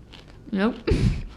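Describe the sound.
A brief voiced sound, then a loud crunch as a crisp chip is bitten and chewed, lasting about a third of a second.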